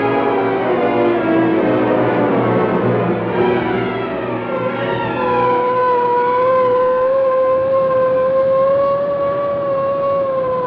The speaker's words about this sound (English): Police car hurrying through the city streets carry Lieutenant Moran, Sergeant Burke, and Burke's friend, Michael Axford of the Daily Sentinel.